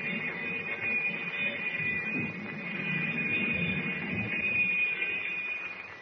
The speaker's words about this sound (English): But even as the alarm bell echoes through the submarine